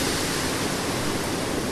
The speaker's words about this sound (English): It's too noisy from the water to hear any music playing from the car.